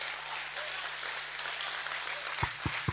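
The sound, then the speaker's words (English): An audience claps in a steady, dense wash of applause, with a low hum underneath and a few heavy thumps near the end. “Come on, clap like he's a great, wonderful Savior.”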